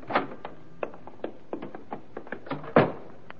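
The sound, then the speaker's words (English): A door leading down to a basement being opened: a string of small clicks and rattles from the latch, then a louder thunk near the end. No one speaks. “Right through this door here.”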